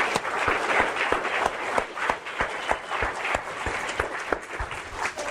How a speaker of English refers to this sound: Let's give her a big round of applause, please.